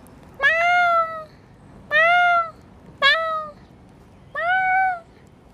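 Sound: person imitating cat meows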